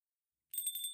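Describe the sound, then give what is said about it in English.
Door chimes ring out as visitors arrive, after a moment of silence, bright and high-pitched with a quick, shimmering pulse, fairly loud, with no voices alongside. “My name came on the tail of door chimes ringing, spoken in the voice of Helen Edna, notary public.”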